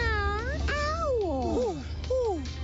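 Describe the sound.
A person imitates a cat, giving three or four drawn-out, wavering meows in quick succession, fairly loud, with a low background hum and no talking.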